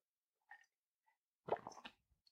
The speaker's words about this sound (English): Just going to have a sip of water, actually.